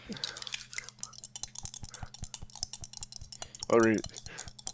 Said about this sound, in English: I'm just gonna gloss over that one with a dice roll.